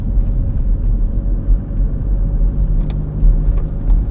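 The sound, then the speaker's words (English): Steady low road rumble from inside a moving car, a constant loud droning hum with faint clicks and rattles, no one speaking. “It's a good time to do the podcast driving in the car, I think.”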